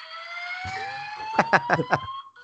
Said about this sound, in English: here's what I was awoken to, and you tell me what you would do if you heard this. The HUD is being investigated. You will be notified when the source of the alarm is identified.